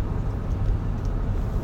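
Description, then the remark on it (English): Steady low rumble of a vehicle cabin, a continuous muffled engine and road drone filling the low end with no talking, heard from inside at a constant level. “Okay, so I'm chilling in the car.”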